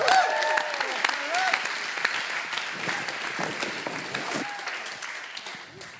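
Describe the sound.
An audience claps in a sustained round of applause, dense and steady for several seconds, with a few faint voices and cheers mixed in before it slowly tapers off.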